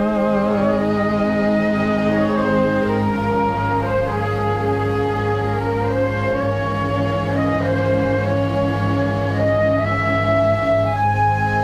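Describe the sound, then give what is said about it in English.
A slow, gentle Irish lullaby plays steadily throughout, its smooth, sustained melody gliding over a constant low drone at an even, moderate volume, with no talking. “An Irish lullaby.”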